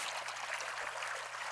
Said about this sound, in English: One cup produces a rush of water from its spout.